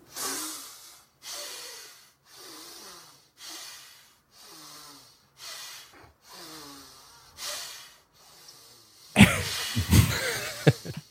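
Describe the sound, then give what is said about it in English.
A man, a political party candidate, breathes heavily in a steady rhythm, demonstrating a testicular breathing method: about eight forceful, evenly spaced breaths, ending in a louder burst of rough, snorting exhalations. “For listeners, you just heard testicular breathing, but what I saw is a bald man with a beard”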